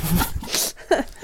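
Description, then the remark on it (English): A voice imitates a nail gun with short, breathy, hissing bursts of mouth noise, a sustained puff followed by a sharper voiced pop, fairly loud. “That was a nail gun.”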